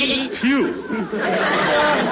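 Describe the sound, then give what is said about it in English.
Several performers, Gildersleeve's Nanny Goats, bleat like nanny goats as they sing their alma mater at a football game, producing quavering, wobbly cries that rise and fall over a dense, noisy background of crowd chatter, fairly loud throughout. “Now let's listen to Gildersleeve's Nanny Goats singing their alma mater.”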